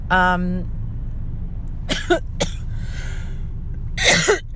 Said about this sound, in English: I'm coughing like I'm on Chernobyl.